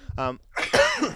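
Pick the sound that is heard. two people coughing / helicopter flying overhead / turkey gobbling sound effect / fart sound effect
two people coughing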